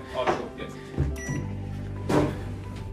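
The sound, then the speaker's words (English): A microwave oven is switched on: a few clicks and clunks, short high beeps, then a steady low electric hum that runs on underneath, with another knock near the end. “And hey, Dad, how about we sit in the lounge? Because then I can put the microwave on.”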